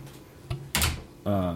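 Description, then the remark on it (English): A door swings shut with a short, dull thud followed by a brief scraping clatter, before a voice starts speaking over faint room noise. “And can you shut that door, please, somebody?”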